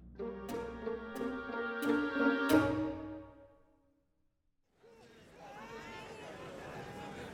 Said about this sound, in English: Those crowds. Is it like this every day on Acheron? Not every day. Every fifth day. Market day.